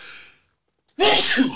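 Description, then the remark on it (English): A loud sneeze bursts out after a brief breathy intake and a moment of silence, one sharp explosive sneeze standing alone. “Bless you.”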